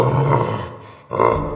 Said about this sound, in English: The gnomes found themselves suddenly staring into its inescapable red eyes, and it was growling.